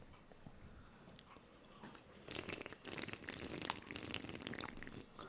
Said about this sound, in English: Good slurp. That was a good slurp there.